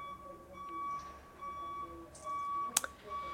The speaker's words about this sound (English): That's going to be an annoying beep